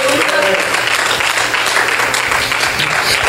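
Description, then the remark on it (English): An audience gives God a clap, clapping steadily for a few seconds, a dense, loud wash of many hands with a low hum underneath and faint voices mixed in. “Come on, give God a clap for him.”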